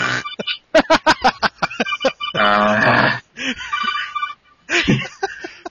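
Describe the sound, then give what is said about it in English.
A telephone rings in a series of short, choppy electronic bursts followed by a longer sustained tone, loud, with no talking over it. “Anyway, phone call now.”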